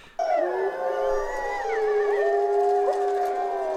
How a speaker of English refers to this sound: We got the wolves.